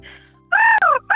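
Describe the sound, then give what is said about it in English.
A caller from Para Hills, on SAFM radio, loudly imitates a harsh, cawing bird call as an animal impersonation: two quick descending squawks followed by the start of a third after a brief pause. “What's your animal impersonation? Here we go. Oh, that's Beck's friend. It is a bird.”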